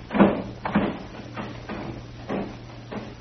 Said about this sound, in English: Open that back door.